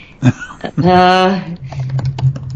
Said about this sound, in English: I know you can hear the typing.